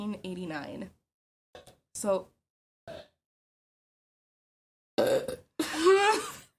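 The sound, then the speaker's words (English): A loud sneeze bursts out near the end, a sharp breathy explosion preceded by a quick intake, after a few short scattered vocal sounds separated by silence. “Bless you.”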